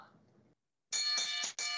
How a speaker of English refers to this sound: Ring the bell.